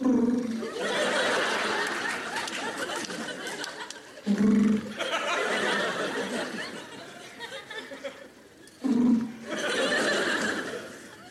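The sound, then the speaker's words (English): A voice imitates a pigeon's call with three short, low cooing hums spaced several seconds apart, separated by stretches of breathy laughter and chatter. “I particularly, one bird I don't like is the pigeon. Can't stand pigeons.”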